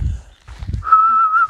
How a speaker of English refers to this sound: I need to learn to whistle.